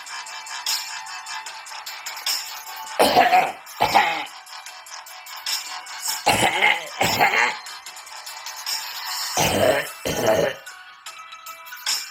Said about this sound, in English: Cough, cough, cough.